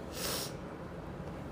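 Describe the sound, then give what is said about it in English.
A single sharp, breathy nasal burst, a sneeze or hard sniff from allergies, then fading into quiet background hiss. No talking. “I got to sneeze.”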